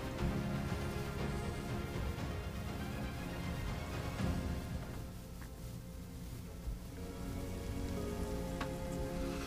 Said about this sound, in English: You're there in the alleyway. And you're kind of taking a moment in the rain.